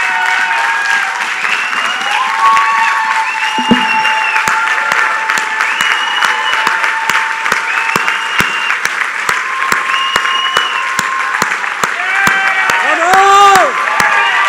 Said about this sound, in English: Man, they deserve a tap on the shoulder. Man, they deserve a clap. Man, they deserve a blessing.